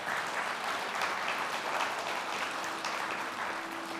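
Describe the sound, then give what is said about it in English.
A crowd applauds steadily, many hands clapping at once in a dense, even wash of noise that holds at a constant level throughout, with no voices rising above it. “I don't know who started that clap, but it was probably my mom.”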